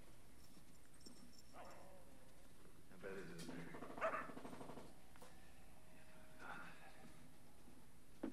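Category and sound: animal, dogs barking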